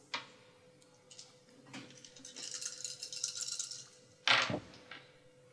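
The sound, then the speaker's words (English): Four dice, two white and two black, are rolled for an investigation test in a tabletop game; they rattle and clatter for a few seconds, building in a steady shaking patter, then land with one sharp, louder clack that quickly fades. No one speaks. “All the dice succeeded.”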